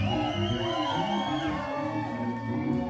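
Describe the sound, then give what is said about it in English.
A concert crowd applauds and cheers steadily throughout as the band's musicians are introduced, a dense wash of clapping and whoops mixed with live band music sustaining underneath. “Please continue your applause for the head counselor”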